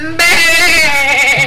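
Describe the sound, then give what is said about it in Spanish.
A goat lets out a single loud bleat that holds for over a second with a nasal, slightly wavering tone before cutting off. “¡Tenemos la cabra!”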